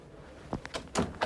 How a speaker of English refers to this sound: Let me close the door here.